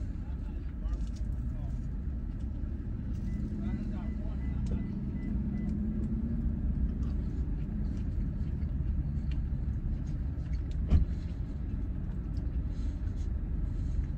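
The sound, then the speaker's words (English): The engine of a neighboring car leaving a barbecue restaurant parking lot rumbles steadily and low for the whole stretch, with a brief knock near the end and faint muffled voices in the background. “People next to me are leaving because they're not going to eat barbecue in the car.”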